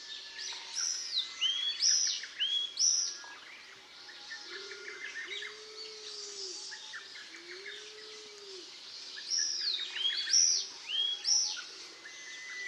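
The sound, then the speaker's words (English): Izu tit (Austin's tit, Sittiparus austinii) calls ring out as bursts of sharp, high chirps near the start and again near the end, over a busy chorus of other birds, with a few low coos in between. “The other common name for this bird, which I like better, is Izu tit.”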